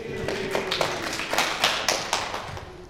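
A small group clapping for a few seconds, with crisp, fairly even claps in a loose rhythm at moderate loudness and no voices.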